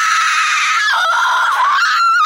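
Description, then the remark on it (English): A loud, high-pitched scream held for about two seconds, its pitch wavering and dipping before rising again at the end, with no talking around it. “Cookies and scream!”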